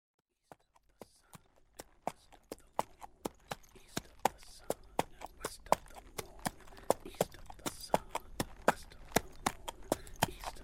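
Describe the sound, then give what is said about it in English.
Horse hooves clip-clop steadily in a quick, even rhythm of sharp knocks, starting sparse and building into a continuous trot that stays fairly loud, with no voices. “Now get on the horse!”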